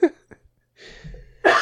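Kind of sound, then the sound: human body sound, coughing fit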